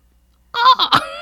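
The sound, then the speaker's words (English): A crow caws loudly and harshly, two rough calls in quick succession that break a stretch of silence, heard outside an open window, with no voices. “We have to wait for the birds outside.”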